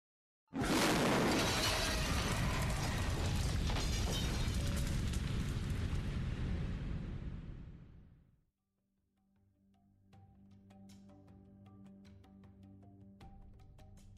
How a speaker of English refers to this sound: Inside the handbag was a 6-pound bomb with a 40-minute timer. In the midst of this busy atmosphere, the bomb exploded.